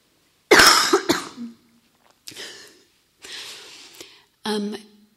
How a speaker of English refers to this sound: Yeah, Doug, I'm just about to cough.